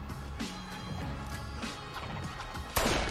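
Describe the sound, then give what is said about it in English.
A single sharp gunshot, the dealer being shot, cracks out near the end, a sudden loud burst that rises above a steady, murky backdrop of low rumbling and layered ambient tones. “Was that a gunshot? Yeah, they shot the dealer.”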